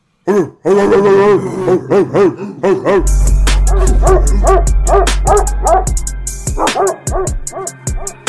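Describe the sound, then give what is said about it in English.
A dog barks in a quick run of loud yips and bow-wows, with music kicking in partway through beneath the continuing barks. “But since I hear that barking for all that dogness coming out, I'd like to go to the dog of the day right fucking now.”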